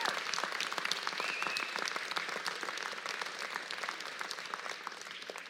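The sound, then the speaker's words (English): An audience breaks into sustained applause, a dense patter of many hands clapping at a steady level for several seconds before easing slightly toward the end, with no one speaking. “So can we give her a big round of applause?”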